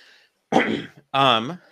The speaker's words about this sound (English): Sorry, I'm like coughing into the microphone. My family's had a cold this past week. Plus a little bit of sleep deprivation from the newborn, so.